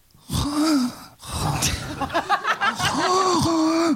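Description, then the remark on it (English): A voice imitates someone's heavy, rasping breathing in a car, drawing loud, strained breaths in and out in an uneven rhythm, with no words spoken. “Oh, the breathing was a bit of a problem as well, wasn't it, at times?”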